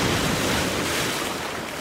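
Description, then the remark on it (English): Ocean waves only 2 to 3 feet high crash and wash against a rocky shore at Quoddy Head State Park in Lubec on a fairly calm day, in a steady, loud roar of surf, with a hint of wind and no voices. “It sounds wild here today, but this is actually pretty calm. The waves are only 2 to 3 feet.”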